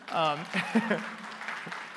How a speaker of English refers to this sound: First off, can we actually all just turn around and give a giant applause to our tech team in the back?